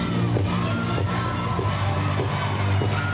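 A large crowd roars steadily with yells and whoops layered over music with a heavy low beat, the noise staying loud and dense throughout.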